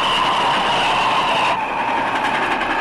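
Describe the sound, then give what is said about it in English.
A train headed for Valley Ho rumbles steadily along railroad tracks, a loud continuous roar with a bright metallic whine that shifts midway as the cars roll past. “Looks like a train headed for Valley Ho.”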